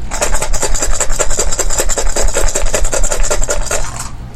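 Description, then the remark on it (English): Dice rattle and clatter in a steady, rapid stream of sharp clicks for about four seconds, fairly loud, with no voices. “In this roll, ones will subtract successes.”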